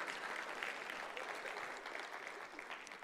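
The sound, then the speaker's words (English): An audience claps steadily, a dense wash of many hands sustained for the full few seconds with no voices rising above it, even in level. “No, don't clap for that. Stop it. Stop it.”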